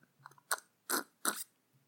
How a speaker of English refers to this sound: And now I get a little reward sip of my whiskey.